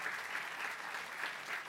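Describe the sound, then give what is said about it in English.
An audience at a Virginia Historical Society event applauding steadily, a dense wash of many hands clapping at an even, moderate loudness with no voices standing out. “It's not that the society is great, it's that you give good applause.”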